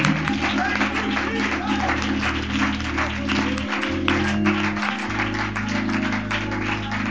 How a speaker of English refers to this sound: Oh, somebody clap your hands for that tonight.